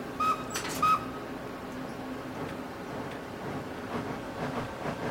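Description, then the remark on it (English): A train pulling into a station: two short whistle toots at the start, then a steady low rumble and clatter that continues at moderate volume, with no one talking. “Tonight, we are just three men waiting for a train.”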